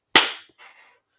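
A single sharp, loud slap of hands cracks out with a short ringing decay, followed by a fainter, softer rustle-like echo. No voices.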